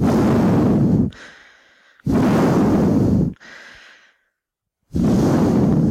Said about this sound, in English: You might not know that, because I do my absolute best to mute out his heavy breathing.